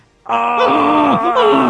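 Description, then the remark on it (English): A loud, drawn-out demonic goat groan, deep and raspy, sliding down in pitch a couple of times over about a second and a half, with no talking over it. “Boop the demon goat!”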